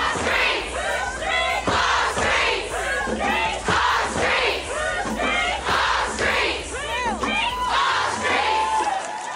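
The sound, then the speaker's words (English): A large protest crowd at a gathering in a park in South London, close to where Sarah Everard was last seen, shouts and chants continuously as police break up the crowds and make arrests, many overlapping voices rising and falling in loud, rhythmic bursts with no quiet gaps. “A gathering at a park in South London, close to where Miss Everard was last seen, saw police use heavy-handed tactics to break up the crowds and make arrests.”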